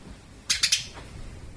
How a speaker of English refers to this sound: And I have a very grumpy sparrow helping me out. What is it, Colette? Nothing? She's overtired. She's in her cage. She's screaming.